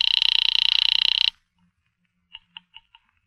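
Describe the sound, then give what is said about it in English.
A telephone in an apartment rings once as an operator puts through a call from a pay phone booth: a loud, rapidly trilling bell burst lasting just over a second, then silence broken by four quick, quieter clicks or taps. “I'm ringing Miss Blake's apartment.”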